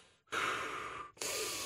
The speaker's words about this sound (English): Just breathing in the cool air. You know, the cool, crisp air.